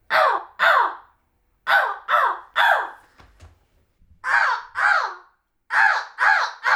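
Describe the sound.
A person imitates a crow, giving about ten harsh, loud caws in clusters of two and three with short pauses between groups and no talking.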